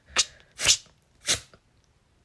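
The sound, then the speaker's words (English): A voice imitates a match being struck to start a fire, as a homemade sound effect, making three short, breathy, hissing bursts at an uneven pace, each one scratchy and bright, with quiet gaps between them. “Let's start the fire. Start the match.”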